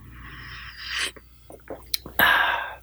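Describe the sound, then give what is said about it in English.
Wet slurping sips of coffee from a mug, followed by a few soft mouth clicks and swallows, then a louder airy slurp near the end, with no talking. “Let me take a sip of coffee here.”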